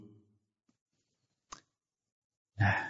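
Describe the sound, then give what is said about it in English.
A deck of tarot cards being shuffled: a soft tap, a sharp snap of cards, then a brief rushing riffle at the end, with no voices. “And then you shuffle a deck until you,”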